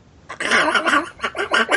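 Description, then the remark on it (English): A person imitates Donald Duck, producing a rapid string of raspy, buzzy quacking syllables in several quick bursts, fairly loud with no other sounds. “That's Donald Duck.”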